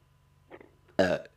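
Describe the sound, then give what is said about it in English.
A loud belch bursts out after a brief soft vocal sound, a single rough, harmonic-rich eructation lasting about a quarter second before trailing off. “Ryan Reynolds and the fact that I just belched”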